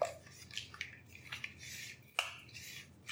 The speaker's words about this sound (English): And there we go, it's a very, very runny batter. And what we're gonna do now is we're gonna fold in those egg whites.